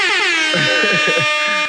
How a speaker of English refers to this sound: Air horns.